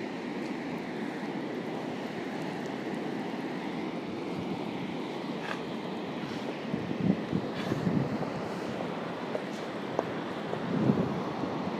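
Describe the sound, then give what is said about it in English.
A steady, loud roar of Atlantic Ocean surf at Lahinch churns under gusting wind as rain falls, with swells rising around the middle and again near the end; no one speaks. “Yeah, this is what the Atlantic Ocean sounds like in Lahinch.”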